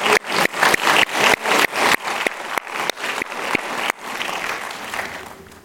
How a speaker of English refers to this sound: Well, let's just clap. Come on. Hallelujah.